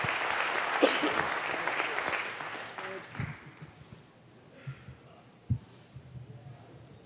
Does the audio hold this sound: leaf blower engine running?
no